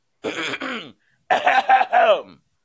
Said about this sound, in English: Let me clear my throat.